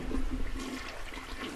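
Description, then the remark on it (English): A hotel toilet is flushed repeatedly and floods, with a steady, rushing gurgle of water, continuous throughout, with no one speaking over it. “Because you keep flushing it and you're flooding the toilet.”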